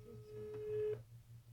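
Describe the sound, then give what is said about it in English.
A phone ringing tone: one steady, clear beep lasting about a second before cutting off, heard alone at moderate volume with a low hum underneath. “So we're going to call the first person.”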